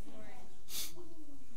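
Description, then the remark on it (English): A single sharp, breathy sniff from a pastor cuts in briefly while his voice carries on speaking around it; he has the sniffles from being emotionally overwhelmed. “You know, now I don't want you all to be thinking, oh, the pastor's got the sniffles, pastor's sick.”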